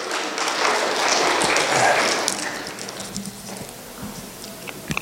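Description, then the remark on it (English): A burst of clapping from a group, dense and fairly loud for the first couple of seconds, then thinning out into a few scattered claps and taps as it dies away. “Give them a round of applause, guys.”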